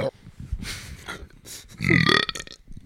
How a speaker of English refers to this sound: Yo, the tea has diminished my burps. I need more like real beer.